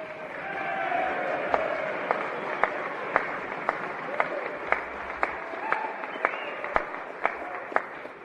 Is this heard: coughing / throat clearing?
no